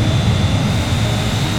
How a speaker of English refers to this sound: It's the jet! It's taking off?